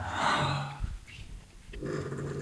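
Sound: yawning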